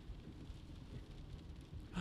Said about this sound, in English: I think you guys can hear the pitter-patter of the rain. How Seattle? Isn't that fun? Isn't that just cool?